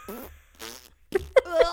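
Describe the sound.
A voice imitates farting with a run of buzzy, sputtering mouth noises in short bursts, ending in a few sharper, louder raspberries.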